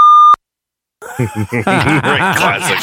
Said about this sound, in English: keep your finger on that beep button for one sec